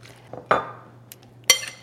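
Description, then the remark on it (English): A utensil stirring black pepper, garlic powder, paprika and cayenne together in a bowl to make Cajun spice: two bright, ringing clinks about a second apart, with soft scraping between them and a steady low hum underneath. “Just give it a stir.”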